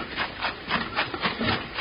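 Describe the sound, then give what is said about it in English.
A washing machine that has been running all day churns steadily, its agitator making a rhythmic, scratchy swish about four times a second at a moderate level, with no voices. “My washing machine? Bill, it's been running all day.”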